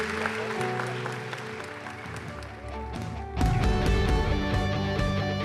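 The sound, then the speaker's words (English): An audience at a church service claps steadily, mixed with sustained music that swells noticeably louder just past the midpoint and stays full to the end. No one speaks. “How about we give Dave and Connie a round of applause?”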